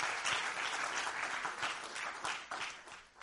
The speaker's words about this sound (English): And so can we give the River Church a round of applause real quick? That would be awesome.